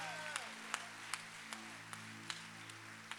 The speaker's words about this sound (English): let's clap for our brothers and sisters standing up.